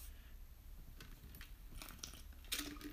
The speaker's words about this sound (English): Had to get a quick drink of water.